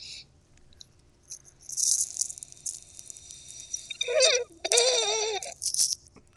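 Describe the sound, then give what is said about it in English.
Loud, deliberately obnoxious slurping of a drink: a long airy sucking hiss, then wobbly, gurgling slurps that bubble and squeak through the liquid for a couple of seconds, ending in a short final suck. No talking. “I'm going to make it a really obnoxious drinking sound.”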